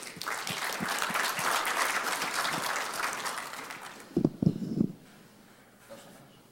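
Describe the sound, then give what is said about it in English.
An audience applauds with dense, steady clapping for about four seconds, then it thins into a few scattered claps and a brief cheer before fading to quiet. “Folks, let's give him applause.”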